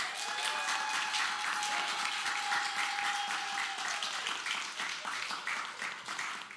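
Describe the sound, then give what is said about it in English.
Sustained audience applause for the Maine Historical Society, at an event held there, fills the whole stretch, a dense, steady wash of many hands clapping, with a faint high whistle-like tone running through the first few seconds. “Can I get one loud on microphone set of applause for the Maine Historical Society, please?”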